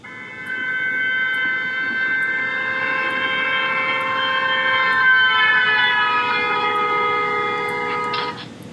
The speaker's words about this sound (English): For example, when a car that is honking its horn approaches you, then passes you by, you notice that the sound has a higher pitch during the approach and a lower pitch as the car passes you and moves away. Here's an example.